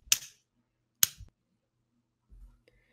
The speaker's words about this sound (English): You just put your hands together and like made a fist and clapped it, and I think you're trying to say we're gonna fight it.